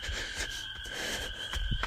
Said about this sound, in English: And just passing by the water now. Man, those frogs are loud.